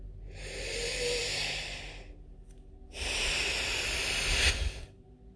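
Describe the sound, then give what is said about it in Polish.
Two long, deep breaths, a slow airy inhale, a brief pause, then an equally long, forceful exhale, with no talking around them. “I jeszcze 2 wdechy.”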